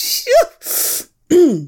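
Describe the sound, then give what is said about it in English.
A loud sneeze, set off by smelling a strong spice mix while cooking: a quick voiced gasp, a sharp breathy burst, then a voiced exhale, all within about two seconds with no talking. “Oh, I'm going to sneeze.”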